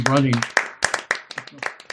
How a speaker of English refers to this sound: Giving applause for your Cyclops voice.